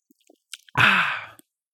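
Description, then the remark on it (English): Someone takes a quick sip of a pint of Guinness stout with a few soft wet mouth clicks, then lets out one loud, breathy, satisfied exhale, done for performance. Nobody speaks. “So cheers to that, as I have a sip of Guinness in all of your collective honour.”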